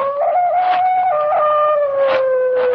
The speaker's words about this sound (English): From somewhere across the lake, I heard the cry of a dog, and the sound of it filtered through and was carried along by the night air.